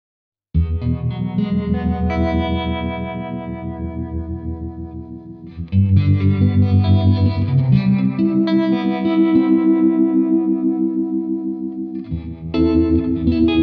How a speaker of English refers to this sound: I'm going to put the 63 reverb on now with it. Okay, and which direction are we? We're reverb into tremolo. Nice.